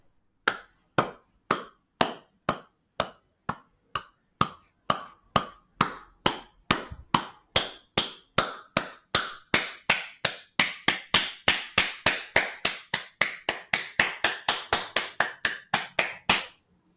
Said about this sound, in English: It's the sound of clapping. Somebody clapping their hands. I wonder why.